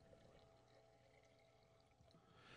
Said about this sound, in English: Pouring my Arizona tea.